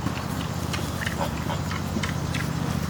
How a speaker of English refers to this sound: Yeah, there's definitely pigs eating. Lapping from over there.